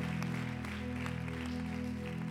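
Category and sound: crowd, audience clapping hands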